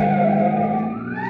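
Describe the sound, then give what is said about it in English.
A loud siren wails steadily, its tone sliding upward toward the end, with a rumbling engine underneath: a police car chasing a speeding car on a highway in Dedham near the Westwood town line and forcing it over to the curb. “Finally, a pursuing police car forces them over to the curb.”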